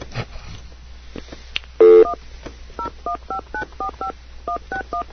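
A quick series of touch-tone keypad beeps as a phone number is dialed, about ten short dual-pitched tones in a steady rhythm, preceded by one longer, louder tone, with faint background noise.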